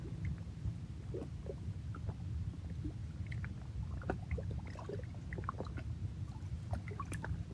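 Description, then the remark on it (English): Steady low wash of lake water lapping against rock at Kichigami, with scattered small splashes and gurgles, continuing without pause and with no voices. “Let's just take some time here to sink into the sound current of the water. Water meeting rock.”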